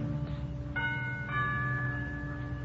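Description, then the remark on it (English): A doorbell at the front door of a villa rings with two chime tones, one struck just after the other, their bright notes sustaining and overlapping over a steady low background hum, moderately loud with no one speaking. “I move across the road, push open the heavy iron gates, hurry up the path to the front door of the villa, and I lean on the bell.”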